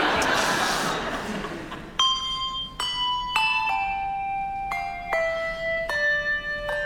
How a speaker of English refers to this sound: When I point at you, you play your bell, okay? Ready?